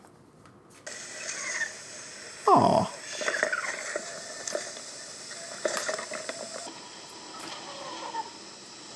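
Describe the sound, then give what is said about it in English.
A female lobster creaking: dry, crackly scrapes and clicks recur irregularly over a steady hiss, with one louder, rougher rasp near the start. A voice briefly murmurs. “Creaking and unedited sound from a female lobster.”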